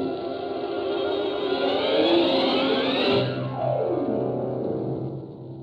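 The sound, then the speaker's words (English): A police squad car's engine revs and accelerates while scouting around the city, rising in pitch for about three seconds, then drops as it shifts down and keeps rumbling steadily, loud with no voices. “After scouting around the city in a squad car for some time, in a vain search for clues to the whereabouts of the Green Hornet”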